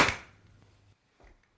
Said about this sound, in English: we're doing the Zoom thing right, so we're all going to clap at the same time to make sure our audio syncs properly. On the count of four, we're going to do the clap. So like, it's going to go 3, 2, 1, clap. That's what we're going to do. 3, 2, 1.